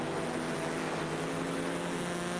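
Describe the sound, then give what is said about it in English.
A race car, apparently the Mann-Filter car, drives past other cars during a race, its engine droning steadily, a dense buzzing roar with layered harmonic tones that holds an even pitch and loudness throughout, with no voices. “Was that the man filter car actually might have been going past them?”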